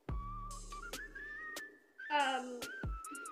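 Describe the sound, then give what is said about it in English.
A cat vocalizes in drawn-out, whistle-like tones, one call sliding downward in pitch. Several sharp clicks and knocks punctuate the sound, and no one speaks. “Sorry if you can hear the cat.”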